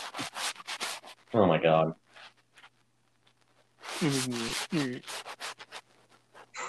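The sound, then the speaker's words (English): Rapid, raspy back-and-forth strokes of sandpaper rubbing on wood, fairly loud, coming in two bursts with brief spoken exclamations breaking in between. “I'm over here sanding wood.”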